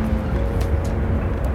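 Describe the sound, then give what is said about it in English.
Heavy mining trucks pulling away at an active iron mine next door to a house in Kinney, a deep, steady engine rumble with a droning low hum that holds constant throughout, with no voices. “You can hear the trucks taking off.”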